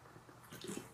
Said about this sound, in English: Pardon my sip.